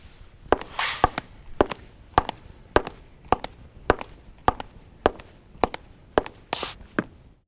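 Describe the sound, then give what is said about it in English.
Hard-soled classic wingtip shoes step on an 18-by-18-inch piece of half-inch plywood to make sound-effect footsteps, in a steady walking rhythm, about a dozen crisp knocks with occasional scuffing slides, and no voices. “These are classic wingtips, about $1.98 Salvation Army. And this is on about an 18 by 18 piece of half-inch plywood. And these are the footsteps.”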